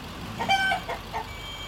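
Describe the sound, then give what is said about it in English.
A few short, high electronic-sounding beeps of a truck's reversing alarm as it backs up, the clearest one early and fainter ones after, heard alone over a quiet background hum. “How will you know when you've backed up far enough?”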